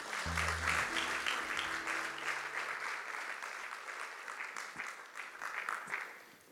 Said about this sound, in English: Clap for them.